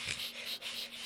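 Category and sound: vocal imitation, imitation of heavy breathing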